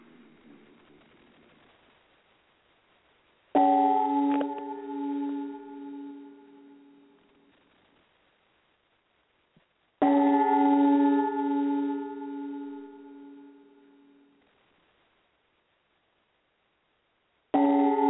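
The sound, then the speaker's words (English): A bell is struck three times, each loud ring sustaining a rich, humming tone that slowly fades before the next strike about six seconds later; the third ring is cut short. “So with three rings of the bell, let's send out our best healing wishes to Jim and Ashley Cash.”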